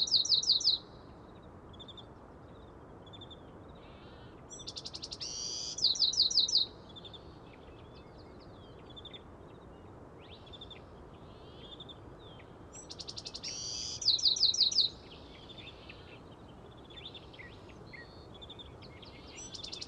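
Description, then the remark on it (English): A small brown Bewick's wren, tail held straight up, sings in bright, buzzy trilled phrases that repeat every several seconds at the start of the dawn chorus, standing out over a steady hiss of night insects and other birds. “The bird is a Buick's wren.”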